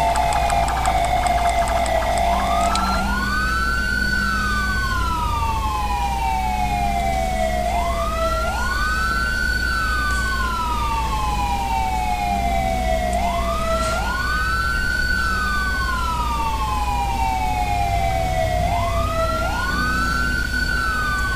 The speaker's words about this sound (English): I like the air horn, you guys.